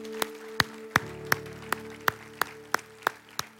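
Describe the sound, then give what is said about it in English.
A church audience claps in praise of God after a prayer, about ten sharp, evenly spaced claps at a steady beat, with a low sustained musical tone humming underneath and no talking. “Can we give God one more hand clap of praise today?”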